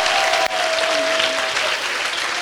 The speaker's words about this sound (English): Now give them a clap offering. Come on.